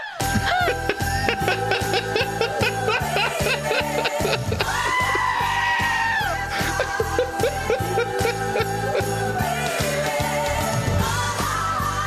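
Goat bleats, loud and wavering, cry out repeatedly over a steady, driving musical beat, blending into the song like a shrill, quavering lead voice.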